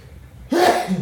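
A single sudden sneeze bursts out fairly loud after a quiet moment, with a sharp onset and a brief voiced trailing tail.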